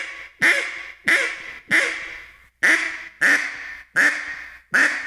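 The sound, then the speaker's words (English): A duck call blows a string of seven coarse, raspy hen quacks, loud, in a steady evenly spaced rhythm with no talking. “That's coarse. Yeah, that's about coarse, raspy right there.”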